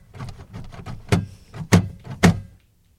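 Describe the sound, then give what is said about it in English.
A taxi driver handles and slams shut a car boot on a quiet street in Paris while handing over luggage: a run of softer knocks and rattles, then three loud bangs in quick succession before the sound cuts to quiet. “the cab driver slammed the boot rather loudly as he handed us our luggage, breaking the silence in the quiet Parisian street.”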